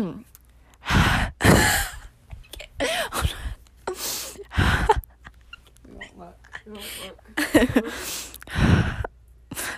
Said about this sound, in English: Can you just add a segment in there with no context, cut this out, and it's just like a minute of me breathing?